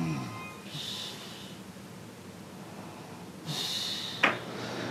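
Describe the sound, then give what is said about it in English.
A mother snores in two rough, rasping breaths a few seconds apart, the second ending in a sharp snort, over a low steady background hum. “And my mom snoring.”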